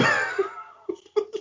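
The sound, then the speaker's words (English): A single sharp sneeze bursts out with a breathy, voiced tail, followed by a few short throaty exhalations or coughs. “Bless you.”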